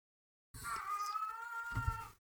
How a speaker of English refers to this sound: Not sure what's happening to the cat, but it was getting very loud.